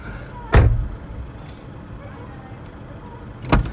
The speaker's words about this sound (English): No, because I don't want to smash the door open. Smash the door. I'm not smashing the door, I'm slapping it out.